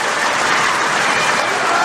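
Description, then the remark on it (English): A crowd applauds steadily for State Representatives Matt Maddock and Stephen Kara, a dense wash of many hands clapping at once that stays evenly loud from start to finish, with no voices rising above it. “I'll clap.”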